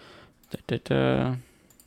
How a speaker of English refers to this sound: You can hear me clicking, sorry, I gotta make sure a couple things are okay.